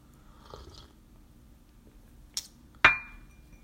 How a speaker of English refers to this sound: I'm sipping my tea, y'all. So you go hit my cup.